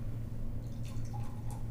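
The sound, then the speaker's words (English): Golden, slightly rosy amber beer pours steadily into a glass, a continuous low gurgling stream with light splashy, fizzing sparkle on top and no voices. “Oh, it's pouring out a nice kind of golden, almost a little rosy amber there.”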